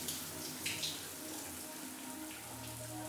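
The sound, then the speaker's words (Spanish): Shower water pours steadily from a tap, a continuous hiss and splatter with a few brighter splashes early on, and no voices. “Cierro la llave, nos abrazamos y nos besamos.”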